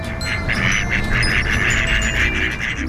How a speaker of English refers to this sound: I don't know. I'm just a duck.